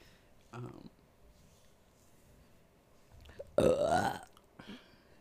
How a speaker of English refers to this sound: I was like, you burp every 15 minutes on the podcast. That's different. It's internal. Yeah. It's internal.